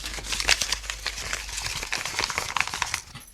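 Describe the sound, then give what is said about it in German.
A page torn out of a diary, with something scribbled on it, rustles and crinkles as it is handled, with quick irregular crackly bursts running steadily for a few seconds, no voices. “Eine herausgerissene Seite aus meinem Tagebuch.”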